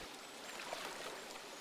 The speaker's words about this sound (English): So let's take a seat here next to this river.